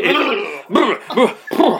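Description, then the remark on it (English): A voice imitates farting with buzzing lip noises: one long, loud rasp followed by three shorter, punchy blasts in quick succession. “Just do like lip... just making those noises.”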